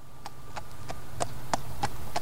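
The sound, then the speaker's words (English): White Lipizzaner stallions' hooves clip-clop on a hard, narrow street in a steady walking rhythm as they are led out of their stables for training at the Spanish Riding School, about seven crisp strikes growing slightly louder, over a low constant background hum. “It happens every time the stallions are led out of their stables for training. As they walk across a narrow street with an easy stride”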